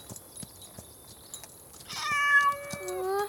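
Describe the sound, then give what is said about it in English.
A quiet stretch with faint scattered clicks gives way to one long, drawn-out cat meow, fairly loud, its tone wavering as it carries to the end. “That's it. Good kitty.”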